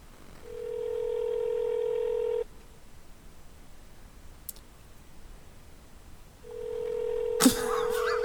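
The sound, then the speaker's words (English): A phone line rings out: two long, steady electronic ring tones separated by a few seconds of quiet, with a brief click and crackle during the second ring. No one speaks. “Alright, so the answer is no, we'll not do a live prank phone call.”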